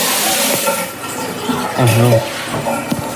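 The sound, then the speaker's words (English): Hot water sprays steadily from plumbing under a sink, a dense, loud hiss that fills the whole few seconds, with muffled voices and a few clunks faintly underneath. “I'm going to go to the junction box and turn off the hot water.”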